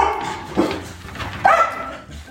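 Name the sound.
dogs barking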